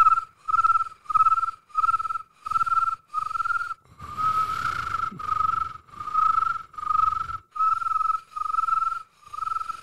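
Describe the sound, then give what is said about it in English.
A steady series of shrill, pulsing chirps, about two per second and fairly loud, sounding like crickets at night, likely imitated by someone whistling, with a brief rumble of background noise midway. “And so late one star-filled night with the crickets chirping out in the darkness.”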